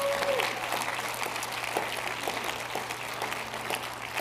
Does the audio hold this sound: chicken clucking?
no